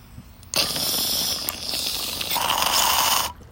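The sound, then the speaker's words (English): A steady bubbling, gurgling rush of a bong hit through an extra-large, deep bowl about 2.5 times regular size lasts about three seconds, loud, rising in pitch toward the end before cutting off abruptly, recorded outdoors. No one speaks. “This bowl that is on this bong is actually fucking massive.”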